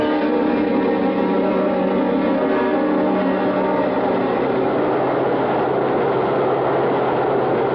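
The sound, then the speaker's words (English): A subway train rumbles steadily and loudly throughout, a dense mechanical roar with a droning hum running underneath. No one speaks. “Come on, we're at the subway.”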